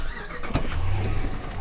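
A car engine turns over with a brief burst of cranking, then settles into a steady, low rumbling idle on a sunny October day. No one speaks.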